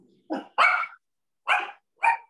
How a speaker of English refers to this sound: Whose dog's that now? That's Anne's.